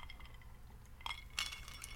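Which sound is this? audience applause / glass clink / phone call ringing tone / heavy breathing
glass clink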